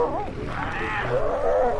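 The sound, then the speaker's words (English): A female seal gives a low, wavering warble to her pup, a continuous undulating call that rises and falls in pitch over about two seconds, fairly loud against a steady background. “That little, that's a female talking to her pup.”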